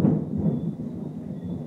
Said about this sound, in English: You hear that? That thunder came from nowhere.